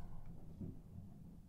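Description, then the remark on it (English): A low, deep rumble of thunder from a serious thunderstorm just after a massive lightning strike rolls steadily through the whole moment, heavy in the bass with a slight swell partway through, and no voices over it. “We just had a massive lightning strike and thunder”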